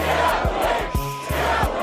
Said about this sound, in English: The rapper turned actor's music turned into an anthem for protesters. Protesters used your music in Brooklyn to yell at the police.